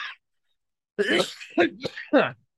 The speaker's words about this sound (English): Sorry, I'm coughing aggressively.